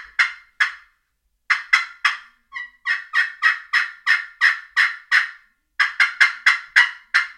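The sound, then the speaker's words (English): A loud turkey call yelping in repeated bursts of sharp, raspy notes, broken by short natural pauses between runs, with no voices; a louder call made so the sound carries further to turkeys. “So you want to start out low, that first call, no response, beef it up a little bit, bring out this next call, and hit them so they have a little bit louder sound carry further.”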